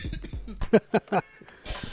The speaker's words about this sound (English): You know when you do that, it causes me to cough. I'm sorry. Oh my gosh, just triggered that.